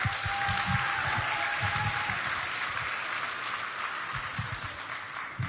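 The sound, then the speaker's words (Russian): Sustained audience applause for a man invited to come up on his birthday, a dense crackling wash of many hands clapping at steady loudness for several seconds, with no talking over it. “А можно тебя попросить выйти, подняться, пожалуйста, под ваши аплодисменты?”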